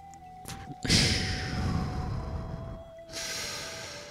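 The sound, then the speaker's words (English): Heavy breathing right up against a microphone: a quick sniff, then a long, loud, rushing exhale for about two seconds, followed by another breath. No one speaks. “You know, breathing into the microphone sounds terrible, doesn't it?”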